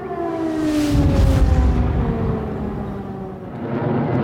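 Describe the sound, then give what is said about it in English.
An air raid siren wails across the capital, Kiev, Ukraine, its steady harmonic tone sliding slowly downward, with a broad rumbling boom and low roar underneath and no voices. “Air raid sirens blared out across the capital.”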